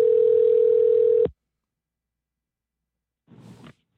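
A steady, loud telephone dial tone, heard while redialing a dropped call, hums for just over a second and cuts off abruptly, followed by silence and then a brief muffled rustle.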